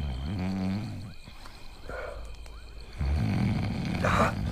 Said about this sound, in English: You're snoring, ….